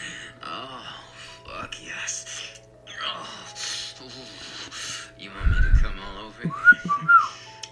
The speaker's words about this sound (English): I can whistle, bitch.